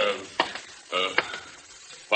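A steady hiss of shower water spraying runs throughout, with brief muffled voices rising over it and a few sharp clicks or clatters.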